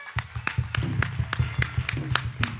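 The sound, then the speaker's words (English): An audience claps together for the Lord after a prayer, in a steady, quick rhythm, loud sharp claps landing roughly four times a second over a low sustained hum or musical undertone, with no talking. “Give the Lord a big clap.”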